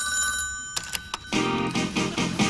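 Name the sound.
telephone ringing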